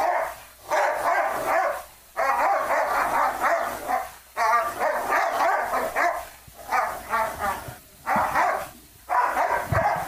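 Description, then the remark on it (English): A dog named Shelby barks loudly in long, rapid volleys of yaps, pausing briefly between bursts before starting again, with no talking over it. “Coming to you live with Shelby, the racist dog.”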